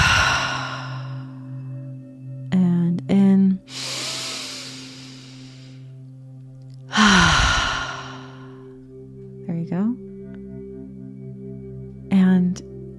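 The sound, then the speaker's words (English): Slow, deep breathing in a breathing exercise: a long airy inhale through the nose followed by a sighing exhale, repeated, heard over a steady low drone with a few short tonal blips. “And just taking a nice deep breath in through the nose and out.”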